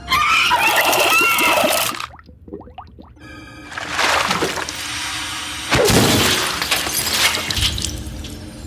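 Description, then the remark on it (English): Loud, brittle shattering of a head frozen in liquid nitrogen being smashed apart in a film, in several crashing bursts separated by short pauses, with crackling debris and scattering fragments trailing after each break. “You know, that the moment when he smashed, puts her head in the nitrogen, lifts it, and his hand goes in there as well, doesn't it?”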